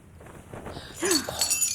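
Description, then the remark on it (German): A glass dome shatters loudly about halfway through, a sudden crash followed by a bright spray of tinkling shards that keeps ringing to the end, after a quieter shuffling start. “Das Glas ist zerbrochen.”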